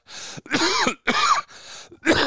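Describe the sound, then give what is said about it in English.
A run of harsh coughs and throat clearing, four or five rough bursts in quick succession with brief gaps between them, loud and with no talking. “Now I'm having a coughing attack.”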